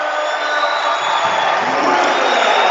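A basketball crowd cheers in a loud, steady roar of many voices that holds unbroken and swells slightly toward the end, with no single voice standing out, after Winterfeld's dunk off a Hastings turnover gives Dordt a 37-35 lead.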